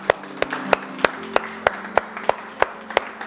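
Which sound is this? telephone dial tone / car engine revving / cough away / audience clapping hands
audience clapping hands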